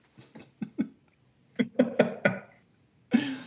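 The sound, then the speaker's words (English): A run of short, throaty burps comes in quick bursts: four rapid ones, a pause, four more, then a final longer, rougher belch. There is no talking. “Wow, that burp really stunk.”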